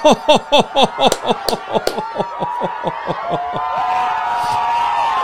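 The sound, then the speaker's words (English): A crowd cheers: quick rhythmic bursts of chanting voices give way to a sustained, steady roar of cheering that holds to the end. “Cheering. Cheering.”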